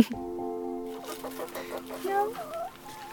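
Hens in a garden cluck in a drawn-out, wavering run of throaty calls, with short rhythmic bursts that rise and fall in pitch toward the end. There are no other sounds.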